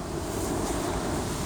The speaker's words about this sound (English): All right, we're going in. Here we go. Longest car wash in the state. Let's see what we got.